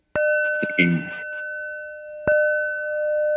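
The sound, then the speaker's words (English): A Tibetan singing bowl is struck twice, each strike blooming into a steady, shimmering ring that hangs in the air; a voice briefly speaks over the first resonance before it fades into the second strike. “Showing you this Tibetan bowl.”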